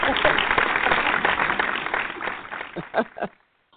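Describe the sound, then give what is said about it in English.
A burst of audience applause at an event after the CeCe CoCo Organics skincare price point is announced, dense clapping that fades over a few seconds, with a couple of last scattered claps before silence. “What's the applause?”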